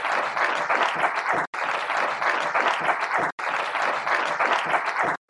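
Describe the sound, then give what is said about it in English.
A round of applause from a crowd at a fighters' face-off ahead of fight night: dense, steady clapping that stays loud throughout, broken by two abrupt near-silent cuts before a final brief drop at the end. “Round of applause.”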